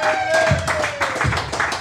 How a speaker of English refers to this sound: Thanks for coming out. Give yourself another round of applause.